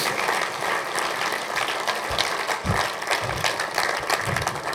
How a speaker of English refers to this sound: Come on, come on, clap your hands.